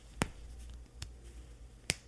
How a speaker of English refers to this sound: It's got these nice little cowboy snaps on them, so I don't have to worry about buttons breaking. You can hear the snaps. Hold on.